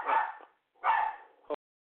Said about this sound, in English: Goddamn dogs, man. Fucking, man. It's not even my fucking dog.